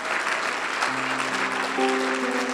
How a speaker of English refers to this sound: And now give God a clap and a shout for the love on the cross.